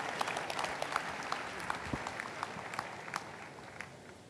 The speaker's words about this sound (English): Let's clap for wonderful Jesus Christ.